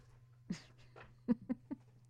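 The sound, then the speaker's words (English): A dog chews on something it ripped off a door, making a string of short, irregular crunching and gnawing bursts with soft breathing between them, fairly quiet with no talking. “My dog just came down here chewing on something he ripped off a door.”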